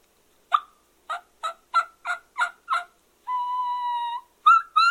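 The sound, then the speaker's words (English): A raspy series of turkey yelps, seven short evenly spaced notes, followed by a long steady whine and two more sharp yelps, made on a jagged split V turkey mouth call, clear with no talking. “That's a split V.”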